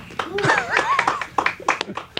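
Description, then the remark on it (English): An audience at a show claps for Cliff Curtis in a loose, uneven burst of sharp hand claps lasting a couple of seconds, with excited voices whooping and calling out over the applause. “That's what we make the white people clap every show.”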